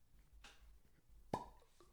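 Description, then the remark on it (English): A single sharp pop as a whiskey bottle is opened, fairly loud with a short hollow ring, preceded by a soft rustle of handling; no one speaks. “Let's pop it open, man.”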